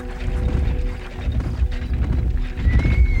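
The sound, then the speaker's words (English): Horses shuffle and stamp, hooves clopping in a steady, busy rhythm, with a brief high whinny rising near the end. No one speaks. “The trail of blood stopped a few blocks away, where they suspected the burglar's team of horses might have been waiting.”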